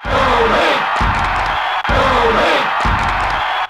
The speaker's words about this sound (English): Soon, the crowd even started to cheer for me.